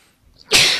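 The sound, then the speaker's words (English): A single sharp sneeze bursts out after a brief quiet inhale, loud, with a bright hissy release that trails off quickly. “Bless you.”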